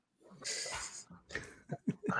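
A dog snorts and breathes heavily, a long breathy huff followed by several short, sharp snuffling bursts.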